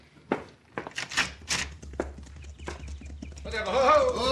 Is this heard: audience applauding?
no